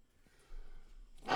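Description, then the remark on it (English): A single sharp sneeze bursts out loudly at the very end after a stretch of near silence with a soft low hum, its noisy, breathy blast cut off abruptly. “Bless you.”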